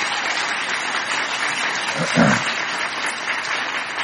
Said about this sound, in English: So these are our seniors, ladies and gentlemen. If y'all want to go ahead and give them a round of applause.